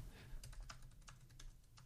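Steady, irregular keystrokes clatter on a computer keyboard as song chords are typed, fairly quiet over a low background hum, with no voices.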